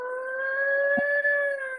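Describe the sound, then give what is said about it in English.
A voice imitates a tornado warning siren, holding one loud, steady wailing tone for a couple of seconds, with no talking around it. “But we got a tornado warning a couple months back, and everybody was just, I hear the siren.”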